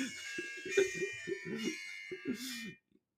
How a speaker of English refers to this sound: So, it's my bad, phone's ringing.